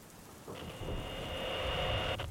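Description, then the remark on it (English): A steady, dense wash of heavy rain from a storm fills the scene throughout, with no distinct thunderclaps. A thin, sustained high tone runs over the downpour for most of its length, then cuts off. “I hoped I could get a signal in the storm.”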